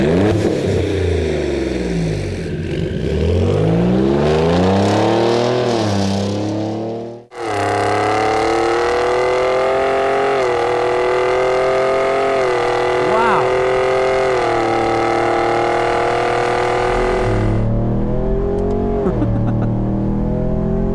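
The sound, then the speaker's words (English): A truck engine revs loudly up and down in swelling surges, cuts off briefly, then holds a steady rumbling idle before revving again near the end. “Same truck, right? It's got to be a truck.”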